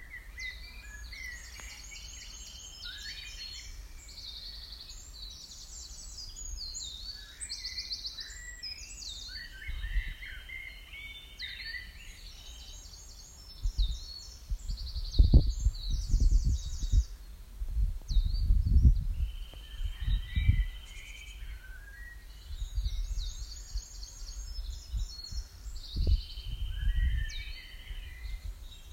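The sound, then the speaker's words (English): Several birds sing and chirp in woodland on the National Trust Ashridge Estate in Hertfordshire, with repeated high trilling phrases overlapping throughout, while low rustling and handling noises thump intermittently midway. “So this time you're going to hear some birdsong from earlier this year in the National Trust Ashridge Estate in Hertfordshire.”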